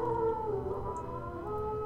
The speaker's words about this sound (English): Wolves. There's a pack of them and they're pretty close.